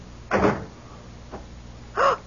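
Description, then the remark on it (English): A door shuts: a short solid thud, a faint click, then a second brief clunk with a slight creak, with no one speaking. “Come in, close the door.”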